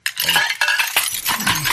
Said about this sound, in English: Why are dishes breaking? No one said the name! Oh, why? They keep breaking!